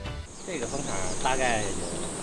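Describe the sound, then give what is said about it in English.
A steady, high insect drone of honeybees buzzing around three-layer multi-box hives at an apiary of over 200 hives in China fills the scene without pause, while indistinct voices murmur faintly underneath. “This apiary has over 200 hives.”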